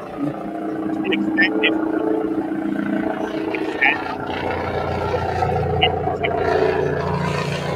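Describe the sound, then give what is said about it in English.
A steady, droning roar like a helicopter rotor or engine, coming through a participant's call line and cutting off his speech, runs unbroken for the whole stretch, loud and rumbling, with muffled voice-like murmurs buried underneath. “We heard like a helicopter or something.”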